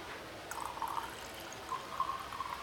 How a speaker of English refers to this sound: I'm using headphones, so maybe it didn't come in so clearly, but that pour is for you. This 7-Eleven wine's for you.